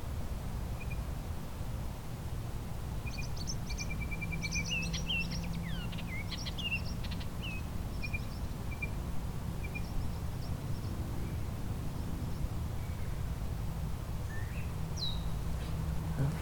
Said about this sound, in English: Behind me, the blue-winged warbler, just sang again, and this gray catbird starting a song. There's our blue-winged warbler.